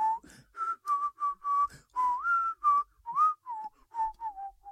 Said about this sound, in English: Whistles Disney